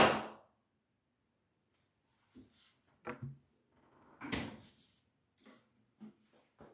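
A door shuts with a loud thump at the start, followed by a few quieter knocks and rattles scattered over the next several seconds, with no one speaking.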